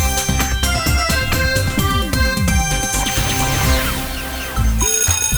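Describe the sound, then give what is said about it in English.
A school bell, the first bell before class, rings loudly and without a break for several seconds, a bright metallic jangle of steady high tones over a busy, rumbling low end, with no voices. “Yeah, that was just the first bell. You got 5 more minutes to get to class.”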